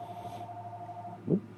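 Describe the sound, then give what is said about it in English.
A phone rings on a Saturday at Mailforce with a steady electronic tone over a low hum, ending in a short, louder burst near the end. No one speaks. “Saturday phone call at Mailforce. That's weird.”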